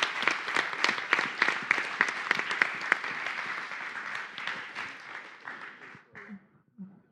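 An audience breaks into steady applause, many hands clapping in a dense, crackling wash that holds for about six seconds before thinning out and fading, with a brief murmur at the end.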